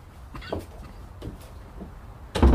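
A door shuts with a solid, heavy thud at the end, preceded by a few faint shuffling movements.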